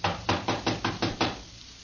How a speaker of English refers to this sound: This is the room. Here. The door's locked, all right. Well, let's try knocking.